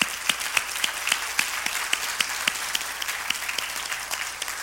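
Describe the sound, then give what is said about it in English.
Applause from a church audience for a group of men, a dense steady patter of many hands clapping with a few sharper individual claps standing out, holding at an even level for several seconds with no voices. “I'd like to give them some applause.”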